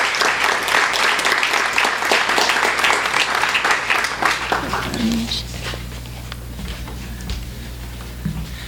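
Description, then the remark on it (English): An audience applauds a student author after her reading, with dense, steady clapping that stays loud for about five seconds, then thins and fades into a quieter murmur with scattered claps. “Yeah, well, let's clap again for her.”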